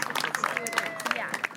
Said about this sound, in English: And also give a round of applause for yourselves for coming out here and showing what action.